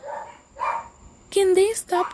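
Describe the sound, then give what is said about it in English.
Dogs bark in short bursts, a couple of softer yaps first, then a louder run of barks near the end, with no talking over them. “Because listen, I hate dogs.”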